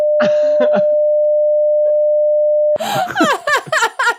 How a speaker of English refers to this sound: I have been known to beep things out on this show from time to time. You might want to beep out this one in this instance.